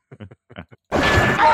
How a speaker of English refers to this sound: All right, here's a bang and then a scream. Enjoy.